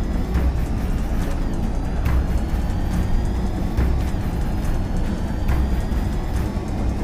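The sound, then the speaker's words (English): The Batmobile, driven by Batman on his way home, drives steadily, its engine and road noise forming a continuous low rumble that stays loud throughout, with faint high whines and no voices. “The Batman makes certain neither Dick nor any car can follow the route as he makes his way home.”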